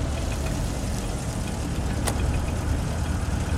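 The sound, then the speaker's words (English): A car engine idles steadily as a car is parked outside a house, squeezed between patrol cars, court cars and water company vans: a low continuous rumble with a soft mechanical click partway through; no one speaks. “They finally make it to the cousin's house and park their car as best as they can between the patrol cars, the court cars, and the water company vans.”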